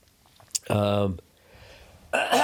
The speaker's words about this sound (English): excuse me. I apologize, guys. I'm fucking coughing all over the place.